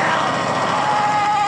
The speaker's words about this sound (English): Now, which one is the vibrating machine? That's coming up next.